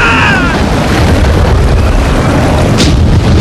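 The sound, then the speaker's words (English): Stormy thunder booms through a loud, unbroken roar of wind and rain, the deep low rumbling steady throughout, with a brief sharp crack rising above it near the end. No voices. “You call this a storm?”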